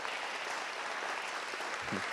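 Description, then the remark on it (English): Steady audience applause welcoming a guest speaker at an evening talk, a dense wash of many hands clapping at an even, sustained level throughout, with a brief low voice-like murmur near the end. “So should we give her a big round of applause?”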